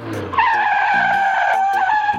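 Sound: car tires skidding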